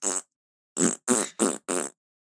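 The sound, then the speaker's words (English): Five short, loud, buzzy bursts that sound like fart noises: one alone, then four in a quick, evenly spaced run, clear with no talking. “It just sounds like farts to me.”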